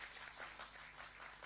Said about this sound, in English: I'm going to give these young ladies a clap. They're doing a great job.